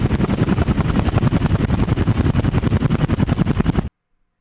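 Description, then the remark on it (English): Rotors of three approaching helicopters thump in a fast, steady rhythm, loud, with a broad whooshing roar beneath the beating blades before the sound cuts off abruptly. “Helicopters! I yelled.”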